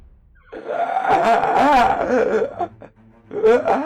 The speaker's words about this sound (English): Well, no, I was actually going to try and do diplomacy on them earlier, but like after hearing that really weird yell, I was just like, oh hell no.